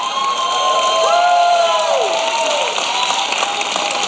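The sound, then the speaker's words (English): A crowd of people claps and cheers, with loud whoops and raised voices rising above a steady wash of applause for several seconds, after hearing that someone has helped people move 52 times. “No, don't clap for that.”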